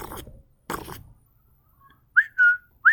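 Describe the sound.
A person whistles at birds, three short, bright notes imitating a bird call, a rising chirp, a held tone and another rising chirp, after a couple of brief rustling noises.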